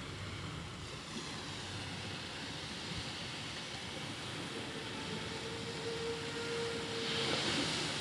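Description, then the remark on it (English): Trucks rumble by beneath a steady wash of ocean surf on the coast of Mexico, with a low engine drone building toward the end; no one speaks. “And the trucks, of course.”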